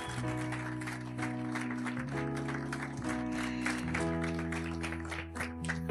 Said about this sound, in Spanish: Vamos, déle ese aplauso a su Dios, a su Padre.